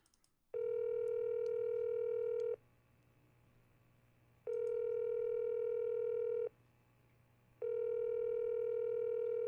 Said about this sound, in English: Let me dial up the phone here. I got it hooked into the board. So hold on one second.